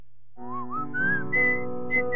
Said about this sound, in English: It's a good whistle there